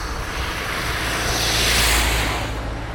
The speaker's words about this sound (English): That's a car looking for somewhere to park. Can't find anywhere because of all the people parked. I suppose that's the problem. These cars can't park because of all the people.